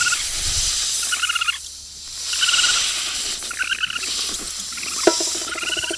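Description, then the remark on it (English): Snakes hiss inside a house in a steady, airy wash, with short chattering bursts rising and falling on top. It sounds like several of them, and no one speaks. “No, they're still in the house. Listen.”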